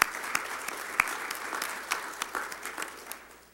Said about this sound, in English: But we've been giving them applause. I believe we ought to give some applause to Roger.